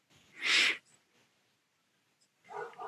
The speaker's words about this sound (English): Yeah. I heard a dog.